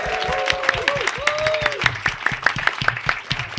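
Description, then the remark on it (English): A crowd bursts into steady, dense applause for the contestants, with high voices whooping and cheering over the clapping at the start before the clapping carries on alone. “Just make some noise for the contestants, everybody.”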